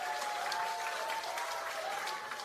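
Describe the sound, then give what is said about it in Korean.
A crowd applauds steadily for party Supreme Council candidate Jang Kyung-tae, a dense, even wash of clapping that holds at a constant level for the whole stretch, with faint cheering voices mixed in underneath. “네, 다시 한번 오늘 장경태 최고위원 후보에게 큰 박수와 함성 부탁드리겠습니다.”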